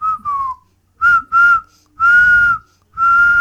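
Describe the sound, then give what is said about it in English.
A clear, steady whistle sounds in five bursts, the first sliding slightly downward, the later ones held longer at an even pitch, fairly loud with no talking. “Dooby whistles had reached the zone by now.”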